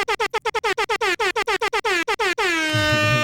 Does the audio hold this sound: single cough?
no